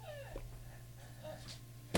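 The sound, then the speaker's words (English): A dog whimpers faintly, giving a couple of short, high, sliding whines over a steady low hum, with a brief sharp click right at the end. “Damn, this dog said.”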